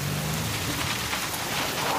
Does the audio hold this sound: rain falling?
yes